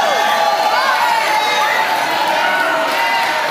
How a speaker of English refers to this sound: Let your praise be so loud that it echoes off the walls of this building.